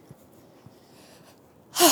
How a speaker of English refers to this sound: Deep breathing, it's really good. Tap into the parasympathetic nervous system.